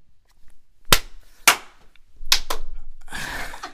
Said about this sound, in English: And so I'm gonna clap, and it's gonna kind of sync everything together, and we're gonna be in it from that point for it.